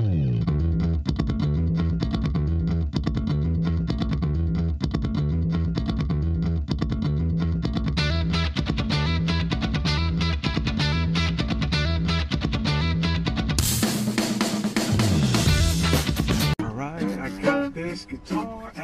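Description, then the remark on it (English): An amateur player who has never taken guitar lessons strums a distorted electric guitar in a loud, repetitive rhythmic riff that grows denser midway and ends in a harsh, noisy burst of chords before fading. “I might even play a few bars of music for you, even though I've never taken guitar lessons.”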